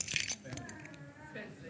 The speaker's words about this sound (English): Now, you may think if you've got amazing eyesight that these are car keys to a really luxurious Skoda Fabia, but they're not. They are, in fact, the car keys to a Ferrari Enzo or an Aston DB9